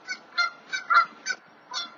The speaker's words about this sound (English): Damn, that goose is going ham right now on that roof.